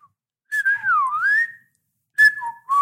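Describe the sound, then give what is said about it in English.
Someone whistles a wavering, mournful little tune in two phrases, the pitch sliding down and back up, clear, with a short pause in between and no talking. “Yeah, it's just weird whistling.”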